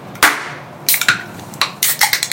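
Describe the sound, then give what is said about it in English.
Sharp hand claps with no voices: a single clap, a short pair, another lone clap, then a quick flurry of rapid claps to finish, all crisp and fairly loud. “Do your clap”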